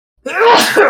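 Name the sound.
a sneeze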